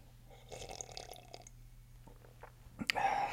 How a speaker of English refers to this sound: So if you haven't already, I want to invite you to take your first sip of tea. And I'm going to do so as well.